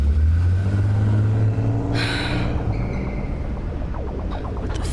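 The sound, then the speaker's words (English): A security car's engine rumbles loudly, revving as it pulls off and fades slightly, with a brief breathy hiss partway through. “Says security on the side of the car.”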